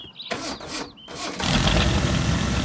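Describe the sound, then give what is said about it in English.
A voice imitates a car engine driving away: two short sputtering cranks, then a loud, rough, sustained engine roar that carries on to the end, with no actual speech. “fires up his vocal car noise and makes it fade into the distance.”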